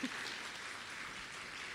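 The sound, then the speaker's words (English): An audience applauds their guest with a steady, dense crackle of many hands clapping together, holding an even level throughout with no voices rising above it. “But before I do, please give a very strong, hard round of applause for our guest.”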